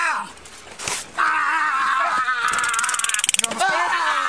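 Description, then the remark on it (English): A woman screams loudly for help, a long, sustained high-pitched cry that starts after a brief quieter moment, wavers and shudders in the middle, and continues to the end. “Hey, stop screaming. Stop that shit. Scream. Scream again.”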